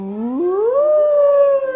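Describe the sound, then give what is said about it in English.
A single voice imitates a fire engine siren to demonstrate the singing voice, sliding smoothly upward from a low pitch to a high one and holding it in one loud, continuous wail with no other sounds. “So when we make those fire engine sounds,”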